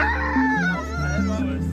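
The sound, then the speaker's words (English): A person imitates a rooster's crow with a loud, strained voice, sliding between held pitches in a stepped pattern for nearly two seconds. “That sounds like a rooster in the morning.”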